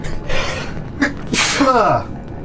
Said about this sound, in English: I'm gonna sneeze.